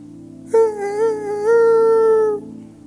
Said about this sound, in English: That's my rooster.